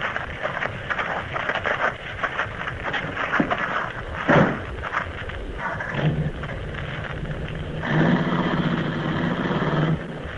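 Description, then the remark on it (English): A motor engine runs steadily with a loud, continuous rumbling drone, briefly surging and then settling into a harsher, buzzing tone near the end. No voices are heard. “Try to out-yell that motor.”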